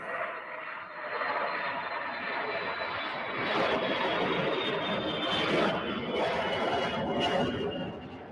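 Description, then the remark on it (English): Loud, steady roar of the jet engines of a Boeing 707 surveillance plane with a radar dome, at a base in Western Germany, about to take off; a broad sustained rumble with a faint high whine, swelling slightly midway as the engines spool up. “And up there you can see a radar dome because it's a surveillance plane.”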